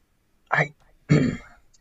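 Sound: throat clearing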